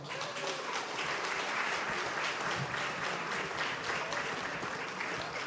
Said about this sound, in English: Anyway, he will read poems that he has written. So put your hands together and give him a warm welcome.